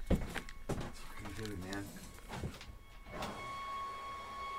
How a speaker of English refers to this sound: Leaf blower. You've got leaf blower noise. Yeah. They have a filter for that.